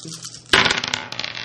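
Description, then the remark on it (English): A handful of eight dice, rolled for a persuasion and deceit attack, clatter onto a hard surface with a sudden loud burst, followed by quick rattling bounces that settle over about a second. Dry, with no voices. “So I have eight dice.”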